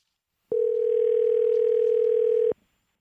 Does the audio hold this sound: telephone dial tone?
yes